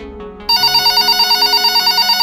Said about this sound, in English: That particular day, when inside Rengel's house, the phone rang.